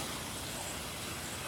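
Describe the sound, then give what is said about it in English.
Heavy rain pours down in a steady, dense hiss that fills the whole clip without letup, with a low rumble underneath and no voices. “It is pouring down rain and I'm going to get soaked, which is not a good thing if you're trying to record on a smartphone.”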